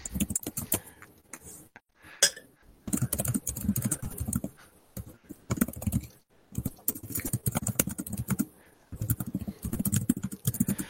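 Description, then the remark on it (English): Rapid typing on a computer keyboard into a Roll20 chat, keys clattering in uneven bursts with brief pauses between flurries, no voices over it. “I love that I can hear the typing.”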